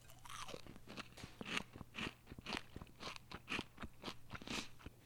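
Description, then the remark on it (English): Crisp crunching as someone bites into and chews a quarter of a falafel ball with a leaf of spinach, the falafel too crunchy on the outside and soft on the inside, with about ten steady, rhythmic crunches and no talking over a faint low hum. “Got a little bit too crunchy on the outside, soft on the inside, and I would think that that would mean too high of temperature, but there's no telling with this.”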